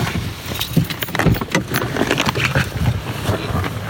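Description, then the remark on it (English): A bunch of keys jangles, with irregular metallic clinks and rattles running for several seconds over a low background rumble. “Let me make sure I have my keys. I do.”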